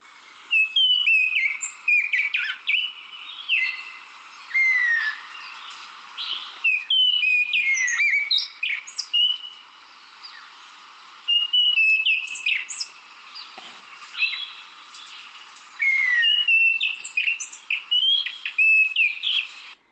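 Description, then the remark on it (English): An orange ground thrush sings a run of clear, whistled phrases with rising and falling notes, repeated in bursts with short pauses, fairly loud over a quiet background. “Here's the sound, not noise, excuse me when I say that, the call of the orange ground thrush.”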